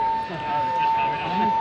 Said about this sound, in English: So it's probably someone probably just pulled the alarm.